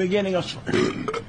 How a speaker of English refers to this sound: Her facial expression like completely changed. She like burped downwards. Like what? Did she pass away? Wait, watch her mouth. Watch her mouth when she burps.